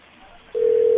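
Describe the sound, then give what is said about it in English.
A telephone ring tone begins about halfway through, a steady, fairly loud electronic tone that holds unbroken to the end over faint background noise. No one speaks. “I think I just got a ring on Vera's phone.”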